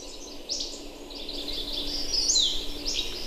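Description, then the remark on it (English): A dense chorus of many birds sings continuously later in the breeding season, about three weeks after May 20, many high chirps and trills overlapping one another at moderate volume, with no talking. “Later in the season, and there's a whole bunch of birds singing almost on top of each other.”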